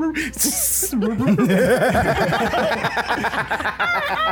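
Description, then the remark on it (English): A voice lets out a sharp hiss in imitation of a snake, speaking Parseltongue, then slides into strained, warbling vocal noises that carry on for a few seconds. “She opens back the door, and I'm like, speaking parcel tongues.”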